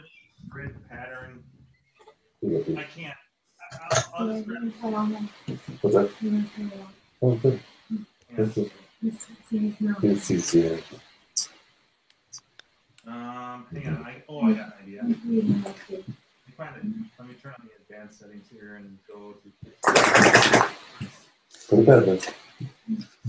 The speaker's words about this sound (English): I can't. Was it the sound of a dog shaking? There it is, the sound of dogs shaking.